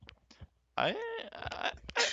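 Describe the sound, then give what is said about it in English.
A single loud sneeze bursts out after a couple of quick sharp intakes of breath, with a strained vocal tone trailing through the blast before it cuts off. “Bless you.”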